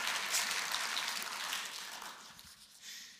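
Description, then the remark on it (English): Sustained audience applause for the speaker's wife, a dense wash of many hands clapping at a steady, fairly loud level that thins slightly toward the end. No one speaks over it. “She's super extrovert, so the more you clap for her, the happier she is.”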